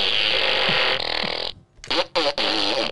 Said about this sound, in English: Here's a little fart gun for you.